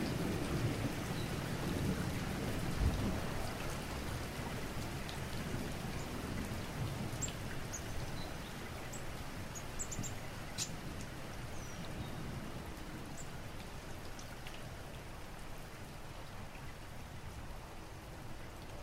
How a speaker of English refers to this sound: She turns up her face and lets the rain wash the worst of it away.